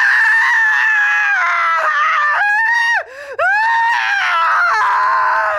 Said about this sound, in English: At that moment, Deborah Leeds let out a blood-curdling scream.